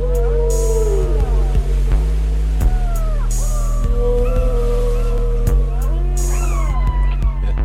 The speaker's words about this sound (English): I don't think that's a little fella. Oh, big fella. Big whale.